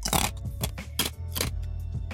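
Loud, crisp crunching from a man chewing ice, with five or six sharp bursts coming at an uneven rhythm over a low steady hum. No one speaks.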